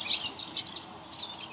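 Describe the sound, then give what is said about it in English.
Birds chirp in a steady, busy chorus of high, bright tweets that overlap continuously, moderately faint, with no voices. “I don't know if the birds are enjoying it or...”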